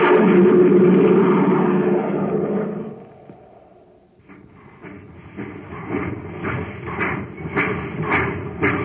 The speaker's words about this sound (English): Do you hear that, gang? That's the Terra Express train trying to get up speed on ordinary fuel. Not very speedy, is it?